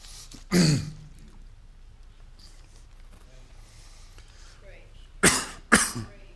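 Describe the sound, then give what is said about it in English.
A single harsh cough, then a quiet pause before two more quick, throaty coughs clear the throat near the end. “Let's pull out the faithful cough drop and we'll move on from there.”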